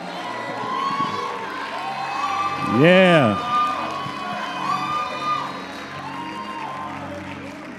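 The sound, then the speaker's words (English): An audience at a church service applauds and cheers in praise of God in a steady, dense wash of clapping and voices, with one loud rising-and-falling whoop in the middle and a brief spoken word. “Give God another hand of praise.”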